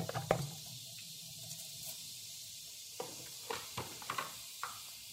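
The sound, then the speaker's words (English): Two teaspoons of cumin seeds sizzle and crackle in three tablespoons of hot olive oil in a pan, a steady hiss broken by sharp irregular pops and spits, with no talking. “Once you kind of hear this sizzling sound, so the first thing that we are going to add, about 4 cloves.”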